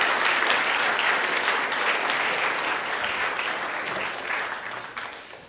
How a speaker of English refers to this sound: So let's do that as a body. And let's give them one more round of applause as we celebrate.